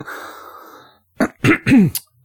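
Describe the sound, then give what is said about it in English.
A loud throat clearing right into the microphone: a soft breathy rasp, then a few quick harsh guttural bursts, the last one rising into a grunt-like rumble. “Sorry, I'm clearing my throat into the mic.”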